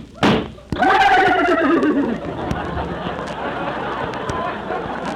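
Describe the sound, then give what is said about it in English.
A sharp burst of noise, then performers in a western comedy sketch imitating horses, whinnying in a loud, wavering, falling pitch for about a second and a half, fading into a steady murmur of background noise. “And … and … will double as deputy sheriffs and horses.”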